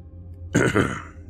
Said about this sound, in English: He cleared his throat again and coughed slightly.